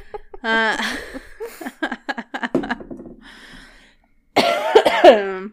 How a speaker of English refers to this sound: Are you excited to edit out all my coughing? Yes, so excited.